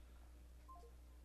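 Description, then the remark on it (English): A quick three-note descending electronic telephone tone sounds once as a caller hangs up, faint and brief over a steady low hum, with no voices. “He hung up right away.”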